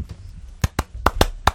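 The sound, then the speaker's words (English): Five sharp, loud hand claps landing in an uneven rhythm of quick pairs followed by a final clap, with no talking. “Big old clap here.”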